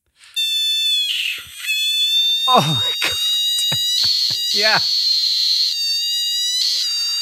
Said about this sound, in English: Yeah, I mean, let me play you a clip of a giant screaming frog. That is, I believe, the name of the frog.